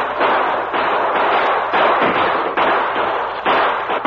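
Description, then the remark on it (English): A loud, sustained volley of rifle gunfire from men at a stockade firing toward attacking Indians to hold them back, many shots overlapping in rapid bursts that crackle and echo without pause, with no voices. “Have the men fire toward them to keep them back. Right, sir. Open fire.”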